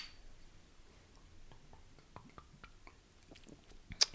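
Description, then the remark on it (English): Drink containers clink together once in a toast, a bright, sharp knock near the end, after a stretch of quiet, scattered little clicks and rustles. “Clink. Clink.”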